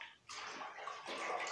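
Steady water sound in a bathtub, sloshing and splashing continuously with a brief quiet dip near the start and a slight swell toward the end. No voices.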